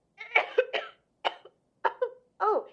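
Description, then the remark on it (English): An elderly woman, a grandmother feeling a little ill, coughs while leaving a message on an answering machine: a rapid burst of three harsh coughs, then three more single coughs spaced out with short pauses between them. No one speaks. “I'm sorry for coughing into your machine like that.”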